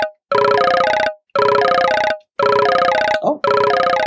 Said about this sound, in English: My phone vibrating and ringing.